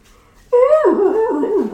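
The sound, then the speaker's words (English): A dog whimpers on a front lawn after a brief quiet moment, one drawn-out, fairly loud whine that starts high and then wavers downward in pitch before trailing off. “he knew that the dog was riled up, but he didn't know why”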